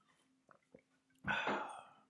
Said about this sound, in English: That was a collective sip? Yeah, synchronized.